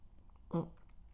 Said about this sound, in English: So let me have a sip of my, I'm not used to doing these on my own anymore. Let me have a sip of my Americano coffee.